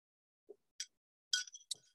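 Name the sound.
glass clinking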